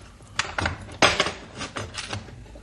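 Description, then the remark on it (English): A padlock on a plain, ordinary door at the back of a truck is unlocked, a short run of sharp metallic clicks and rattling clinks, with one louder clack in the middle and no voices. “Now, plain, ordinary door with the padlock. We unlock it.”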